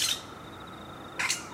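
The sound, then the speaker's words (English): Two short, harsh, high-pitched screeches from a flying fox (fruit bat) in a big tree, one at the start and one near the end, with a thin steady whine between them. Fairly quiet, and no one speaks. “Yes, it's a flying fox.”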